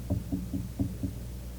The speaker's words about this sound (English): Now, there comes a time in a person's life, a man who just ignores God and leaves God out, the Holy Spirit will knock. So, "Did I hear somebody knocking?